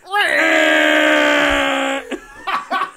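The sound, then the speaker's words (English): Voices imitate the roar of the monster character Angerus: one loud, sustained, tonal bellow held steady for about two seconds, then it breaks off into a few short, choppy vocal bursts like laughter. “Dude, there are like 18 videos of this roar.”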